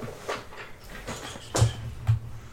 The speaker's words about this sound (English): Gotta open the DM's closet so I can get to my dice. The DM's door.